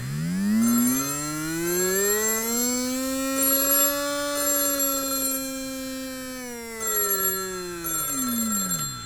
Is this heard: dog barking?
no